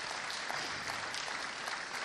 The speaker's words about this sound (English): Shall we give him another round of applause? That's great.